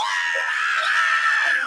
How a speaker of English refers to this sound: There's a great scream coming up here that leads into the guitar solo. Let's hear that scream.